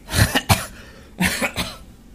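Someone clears their throat in two rough rounds, each a pair of quick, harsh, cough-like bursts separated by a short pause, with no talking.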